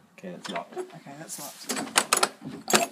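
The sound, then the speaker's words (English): A locked door creaks with a drawn-out, wavering groan, then several sharp knocks and rattles as it is pushed and jiggled without giving way. “Presumably this is going to be open. Creak.”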